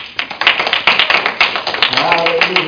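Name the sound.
audience hand clapping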